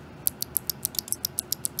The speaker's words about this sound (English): And then finally, there's the Kale Box Whites, and these are actually clicky. So if you want loud clicky buttons, these are the clickiest by far. Maybe I'll even take one out and I'll demonstrate the clickiness.